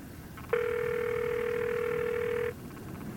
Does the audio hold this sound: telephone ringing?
yes